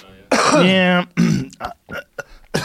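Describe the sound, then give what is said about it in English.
A loud throat clearing with a harsh, rasping tone, followed by a few shorter, breathy coughs and grunts in quick succession, from a congested person recovering from a cold. “I'm a little congested, so I keep coughing.”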